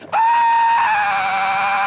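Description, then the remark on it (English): A man lets out a loud, sustained scream, holding one strained high pitch for almost two seconds, reenacting waking from a nightmare screaming on a waterbed. “Screaming on my waterbed.”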